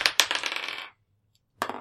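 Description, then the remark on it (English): Dice clatter across a hard tabletop in a bright rattle of quick knocks that settles after about a second, then another short burst of rolling follows a moment of silence. “Yeah, you tie, roll a luck check. Actually, sorry, roll percentile dice.”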